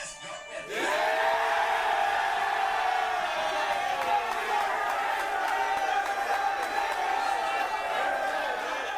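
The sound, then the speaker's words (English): A team erupts into loud, sustained cheering and whooping on Selection Sunday after a brief quiet start, voices shouting over one another with a continuous wash of clapping underneath. “I don't know if you saw behind me, but I got all my team back here cheering and applauding like I just got selected to the NCAA tournament.”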